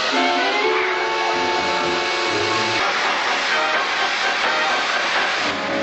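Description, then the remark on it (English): A loud, continuous hissing spray of 'radioactive spray', aimed at Batman's cowl in the 1966 Batman series, runs steadily for about six seconds: a broad airy rush with a faint tonal whine inside it and no break or pause. “Radioactive spray. Try this on your cowl for size.”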